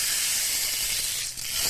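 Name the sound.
rain stick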